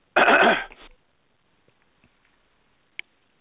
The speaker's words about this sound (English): I think I just hacked on radio. I was trying to clear my throat, and I thought I hit the mute button, so I apologize.